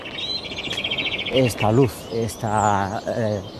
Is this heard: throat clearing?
no